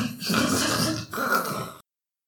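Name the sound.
imitated snoring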